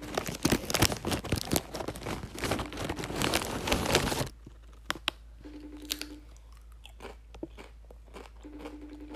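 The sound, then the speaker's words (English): Loud, rapid crunching of crispy spicy nacho chips for about four seconds, then quieter, sparse chewing crunches with brief gaps. No one speaks. “These are spicy nacho.”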